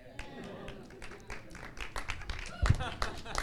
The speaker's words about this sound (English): Yeah. You can cheer now.